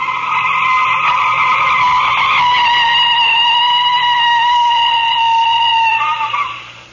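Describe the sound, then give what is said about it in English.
A long, loud screech of car tires skidding on pavement, a sustained high-pitched squeal of brakes lasting several seconds before fading out as the car comes to a stop at the corner of 2nd Street. “Stop the car. Okay, I'll stop it here at the corner of 2nd Street.”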